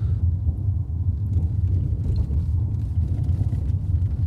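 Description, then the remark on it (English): A car engine idles steadily with a deep, continuous low rumble, fairly loud, with no talking over it for the few seconds it runs. “I'm letting you lot listen to the car whilst I yawn.”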